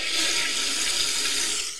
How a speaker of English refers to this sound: New sound effect when we all take the under. Toilet noise. What was it? It's a toilet flushing.